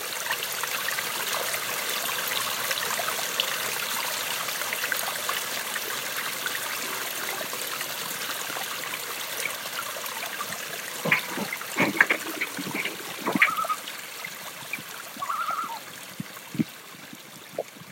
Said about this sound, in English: This is a mountain stream, the source of a river, and eventually a lake.